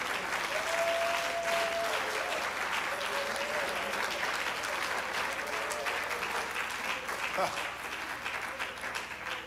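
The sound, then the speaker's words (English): An audience claps their hands to the Lord in a sustained, dense wash of applause lasting several seconds, steady and fairly loud, with faint voices and a brief tone underneath. “Let's clap our hands to the Lord tonight.”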